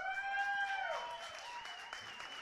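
A crowd applauding steadily for a couple of seconds, a dense wash of clapping with a few high whistles or cheers ringing out over it at the start.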